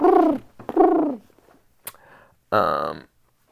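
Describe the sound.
A human voice mimics a pigeon's coo: two warbling, throaty hoots close together, a short pause with a faint click, then one rougher, buzzier coo, all fairly loud.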